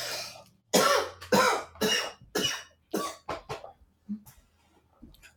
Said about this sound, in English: I can cut out the coughing in post-production, so don't worry. Thank you. I'll just I'm just noting down when it happens, so I'll be able to go back and edit it out.